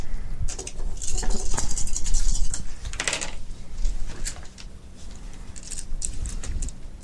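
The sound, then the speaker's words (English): Dice clatter and tumble across a table in an irregular burst of sharp clicks and rattles, several rolls overlapping for a few seconds before trailing off into scattered taps. “Then, okay, let's all roll our dice.”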